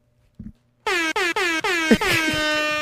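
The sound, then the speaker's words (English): A loud, brassy air horn sound effect blasts in a quick rhythmic series of short bursts, then holds into a longer sustained blare, dominant after a brief soft thump. “this nigga forgot to hit my air horn.”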